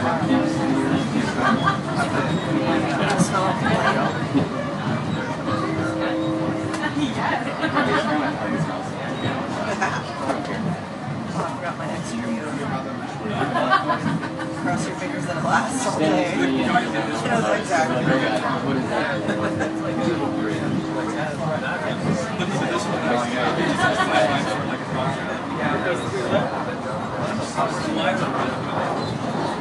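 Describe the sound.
A steady wash of crowd chatter, many overlapping voices blending into an indistinct murmur at a fairly even, moderate level, with occasional sharper voices and clatters rising out of the babble.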